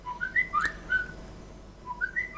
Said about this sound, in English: Oh, it's my fucking phone.